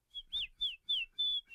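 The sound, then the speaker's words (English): A little bird in a tree chirps about five times in quick succession, each short, high, slightly sweeping note rising and falling, clear with no talking. “He looked up into the tree and saw a little bird.”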